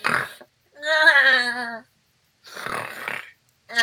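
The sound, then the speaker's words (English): A voice imitates a character snoring loudly as a goat inside a cabin, in several rough, bleating bursts separated by short pauses, prominent, with no other talking. “As you are pacing around the house, you hear Ferris inside the cabin snoring loudly as a goat.”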